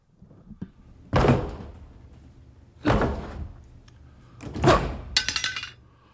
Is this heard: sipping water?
no